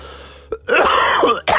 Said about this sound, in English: I'm not thankful for that fucking cough. It's like enough already.